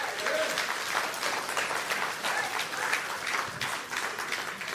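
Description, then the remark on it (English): An audience gives Jesus a hand clap, applauding with dense, steady clapping that fills the whole stretch at an even loudness, the individual claps blurring into a continuous rushing patter. “Someone ought to give Jesus a hand clap on that.”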